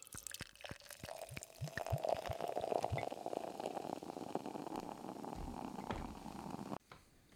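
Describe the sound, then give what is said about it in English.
A blended, bourbon-barrel-aged Boulevard beer of 12.28% ABV glugs and splashes from a bottle into a glass, with gurgling bursts early on giving way to a steady fizzing pour that stops abruptly near the end. No one speaks. “The last beer is poured out.”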